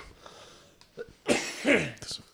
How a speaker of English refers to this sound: Someone was complaining about the coughing and I just coughed. Yeah, I coughed four times.